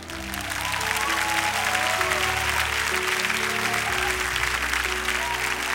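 An audience applauds and cheers in praise after praying together, with steady, loud clapping and scattered shouts of praise, while a sustained organ or keyboard chord holds underneath throughout.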